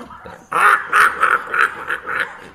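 Newly arrived Muscovy ducks on a homestead, including a big white male, call in a quick run of about six rhythmic, breathy quacking bursts, fairly loud, with no talking over them.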